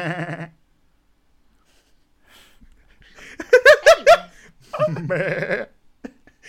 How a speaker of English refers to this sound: Goats don't make that noise. That's sheep, you idiot.